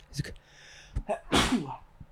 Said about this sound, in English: And I have to sneeze. Maybe. Probably. Is it going to happen?